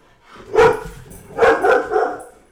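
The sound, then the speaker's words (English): A dog named Cooper barks four times at fireworks going off outside, one sharp bark followed after a pause by three quick, loud barks in a row, with no people talking. “there's a bunch of fireworks or something going off outside. So, hey, it's okay, buddy. Do you want to go under the desk?”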